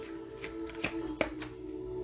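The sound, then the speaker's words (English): A deck of "good dream" oracle cards is shuffled in a soft, continuous papery rustle, with two sharper snapping clicks partway through, all over a low steady hum and with no one speaking. “You know these cards, y'all, by now.”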